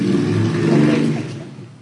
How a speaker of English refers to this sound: Oh, someone's got a stupid loud motorbike.